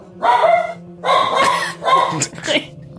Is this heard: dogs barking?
yes